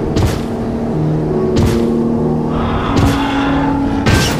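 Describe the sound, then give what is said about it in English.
Four heavy, booming stomps land about every second and a half over a low rumble, the ground shaking, each with a crunching metallic impact as a huge beast steps on the front of a car and crushes its hood flat on a foggy street. “One huge beast stepped on the front of their car. It crushed the hood flat.”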